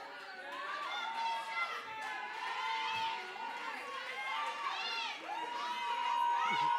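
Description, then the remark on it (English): An audience shouts and cheers together, many excited voices overlapping in a steady, loud roar that carries on throughout with rising and falling whoops. “I learned to go with the goers, so you ain't got to shout for us.”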